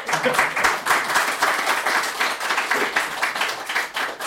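An audience claps steadily for several seconds for the panel, a dense, even patter of many hands with no pauses, fairly loud and bright throughout.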